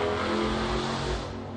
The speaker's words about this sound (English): Wow, that was somebody just what do they call it? Peeled out or whatever? Revved up the engine.